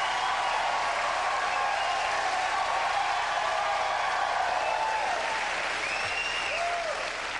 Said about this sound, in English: If they applaud really loudly, everyone in tonight's audience gets a brand new car.